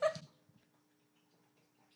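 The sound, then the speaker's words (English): A dog lets out one short, high whimper right at the start, followed by near silence with only a faint steady background hum. “I'm going to feed my dog.”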